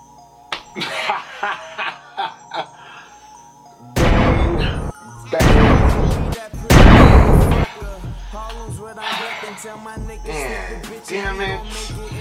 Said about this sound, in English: Gunshots, nigga. Let's go.